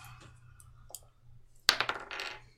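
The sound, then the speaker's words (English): Dice rolled for an Arcana check hit a hard surface with a sharp clack, then rattle and tumble in a quick burst of clicks for about a second before settling, over a low steady hum. “Okay, I want to roll Arcana.”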